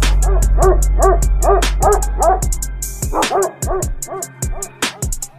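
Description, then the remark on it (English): A dog barks in a rapid, rhythmic string of sharp barks, pauses briefly, then resumes with several more loud barks. No one is talking. “What do dogs do? What's on top of your house? A roof.”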